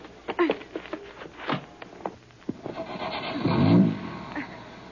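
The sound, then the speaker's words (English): A few sharp clicks and knocks, then a car engine turns over and catches, its low rumble swelling loudly for a moment before settling into a steady idle. “Get in and start the motor.”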